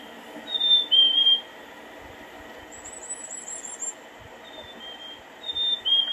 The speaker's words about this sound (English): And that's usually one of the first birds that we can identify at our feeders.